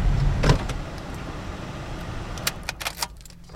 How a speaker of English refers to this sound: So we are currently pulling into the infield lot. And where we will park, and then start walking around the field.